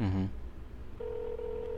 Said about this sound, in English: Okay, I'm calling him. This is a surprise call, huh? This is right up his alley.